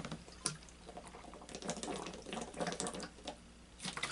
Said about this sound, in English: Also, you know what's good about me urinating on camera? You know what's good about it? I'm hydrated. I've been drinking a lot of water, so I guarantee you it's gonna be bright yellow or clear.